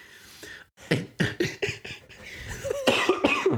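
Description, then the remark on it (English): A burst of loud coughing from a person trying to laugh, several sharp hacks in quick succession, followed by strained, wheezy laughter-like breaths mixed with more coughs. “That wasn't fair because it made me cough and I was trying to laugh.”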